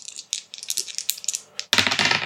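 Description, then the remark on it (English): Hard little objects clatter and rattle in a rapid, uneven burst, then a louder, denser tumble of clicks at the end, as dice are shaken and rolled across a surface in a tabletop role-playing game, landing on a 5, with no voices. “Alright, so that's a 5 on the dice, and 3 superior savior makes it an 8.”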